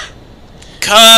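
After a near-silent lull, a single loud sneeze bursts out: a sharp, breathy blast that turns into a voiced, honking tone and continues to the end.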